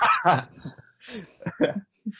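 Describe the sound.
A person's voice mimics a dog barking, letting out a few short, loud woof-like bursts with brief gaps between them.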